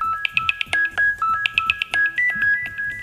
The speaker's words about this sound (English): So there we go, that's the second text message it sent me. If I open up my text messages now, it's from My Home 247. It says, device alert, motion detected, device office main, time 18:30.